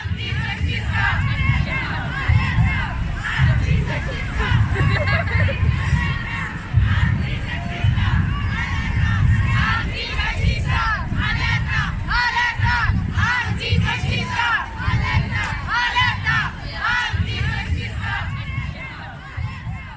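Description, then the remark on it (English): A packed crowd in a large public square roars continuously, many voices shouting and calling over one another in a dense, steady wall of noise with frequent sharp cries rising above the din. “Imagine this space. It's large and it's full of people. In fact, it's packed.”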